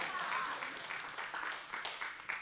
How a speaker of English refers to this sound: Yeah, clap on that.